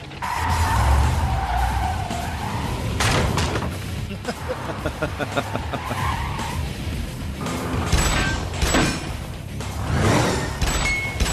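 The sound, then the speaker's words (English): A 1970s Charger muscle car's tires skid and squeal loudly in several long screeching bursts, with engine roar and rumbling road noise beneath, ending in a sharp thump. “Now, this is just quicker. A 70s Charger or a 2000 whatever.”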